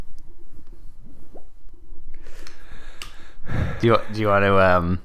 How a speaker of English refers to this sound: I think my breathing is belabored. It's becoming belabored.